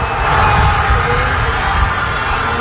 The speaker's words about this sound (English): Complete cheering and chaos. Argentina won. Lionel Messi ended his career with a bang.